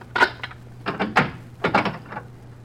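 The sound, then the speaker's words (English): Wooden clunks and rattles as an innkeeper works the latch and swings open a heavy inn door at night, with a low steady hum underneath and no voices. “All right. I'll open up.”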